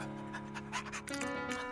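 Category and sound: animal, dog panting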